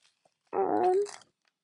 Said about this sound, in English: So many papers. So for you could probably hear my paper moving, you guys. Let me check this one as the last page.